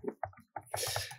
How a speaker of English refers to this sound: Don't mind me. I'm just typing.